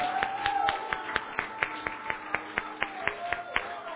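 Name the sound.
audience clapping and cheering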